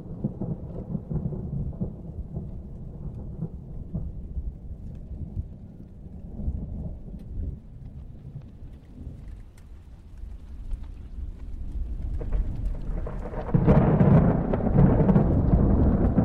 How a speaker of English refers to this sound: He has a wife, he has a family, and then he hears the sounds of distant thunder.